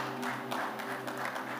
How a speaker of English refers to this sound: Celebrate God with a good clap offering, someone.